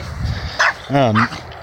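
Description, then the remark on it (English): A dog barks twice, a short sharp yap followed by a longer, drawn-out bark with a wavering, whiny pitch, over a low background rumble. “Hey, dogs.”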